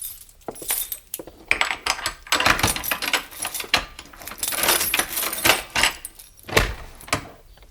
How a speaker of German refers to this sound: Sie zögerte, aber dann dachte sie an ihre Mutter und schloss die Tür auf.